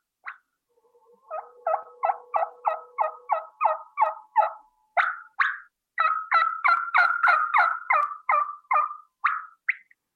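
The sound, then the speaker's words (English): A Woodhaven Ellis New Energy turkey mouth call imitates a hen's soft bubbly clucks and tree calls: a steady run of short, raspy notes, fairly loud, with brief pauses and no talking. “that's going to be basically just some soft bubble clucks and some tree calls”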